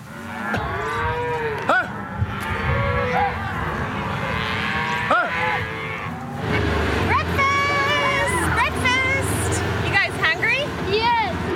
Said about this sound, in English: So hard because there's a lot of cows and calves here.